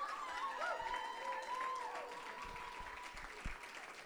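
Sustained audience applause, a dense steady patter of many hands clapping at even loudness, with faint crowd murmur and a few higher tonal sounds mixed in.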